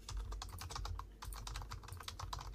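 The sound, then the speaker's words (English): Rapid, steady clatter of keys on a computer keyboard, fairly loud, as someone types a message in a private chat, with a brief pause midway before the typing resumes over a low background hum. “I'm typing to BMG right now.”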